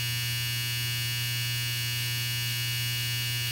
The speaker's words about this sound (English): And that was our dryer, but COVID living, home recording.